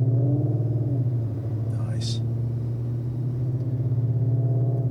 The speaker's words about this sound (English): Sounds good. And they come that way stock sometimes. Good looking car. So it's a maroon GT.